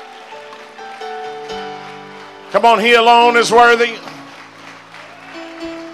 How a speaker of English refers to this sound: Let's give Jesus a hand clap of praise. Hallelujah.